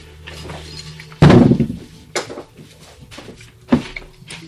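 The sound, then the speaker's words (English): A d20 die lands on a table with a sharp, loud clatter, then gives two lighter, separate knocks as it tumbles to a stop. There are no voices. “I can't roll this d20.”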